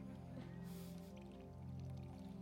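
Water pours into a container in a short, hissing gush lasting under a second, set against a steady low hum that runs throughout; fairly quiet overall, with no talking.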